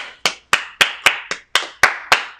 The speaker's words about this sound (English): Can we just get a round of applause? Wasn't good enough. Clap louder.